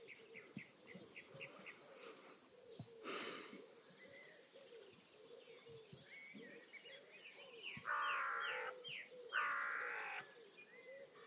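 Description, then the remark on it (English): Several birds chirp and call softly in the open air at daybreak as they quieten down, with repeated short tweets and a low cooing underneath, plus a couple of brighter bursts of song near the end. “Can you hear how much the birds have quietened down?”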